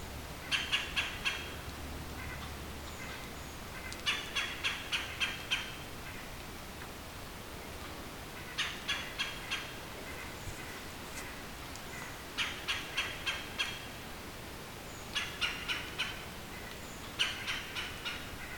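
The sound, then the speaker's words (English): A red-bellied woodpecker calls loudly, giving short bursts of several quick, harsh notes that repeat every couple of seconds against a quiet background. “this red-bellied woodpecker. He's doing his umph umph thing very loudly.”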